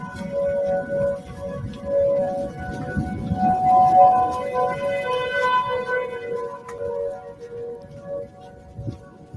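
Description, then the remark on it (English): About four tornado warning sirens in a neighborhood wail at once, their steady tones accidentally harmonizing into an eerie, chord-like drone over low outdoor rumble, with slight wavering pitch throughout. “That one time, all the tornado sirens in my neighborhood accidentally harmonized.”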